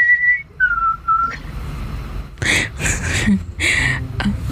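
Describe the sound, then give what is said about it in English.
A person whistles three short, clear notes in quick succession, imitating the Kushtaka's high-pitched three-part low, high, low whistle, each note slightly lower than the last, followed by several breathy, rustling bursts of noise. “The Kushtaka also emit a high-pitched three-part whistle in a pattern of low, high, low.”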